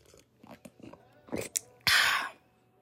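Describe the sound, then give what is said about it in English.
Someone sips hot tea: a few soft mouth clicks and swallows, then one loud, airy slurp lasting about half a second, with no talking. “I want to take a sip of tea real quick before I get into it.”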